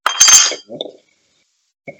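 A beer is cracked open: a sharp snap and a short burst of fizzing hiss, then a light metallic clink and a faint tick a moment later.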